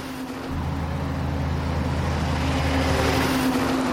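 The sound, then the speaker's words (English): A heavy logging truck rumbles along a road beside a river, its deep engine drone kicking in after a brief pause and holding steady and loud throughout, with no voices. “There is a road running along here used by tourists, fishermen, and a lot of logging trucks.”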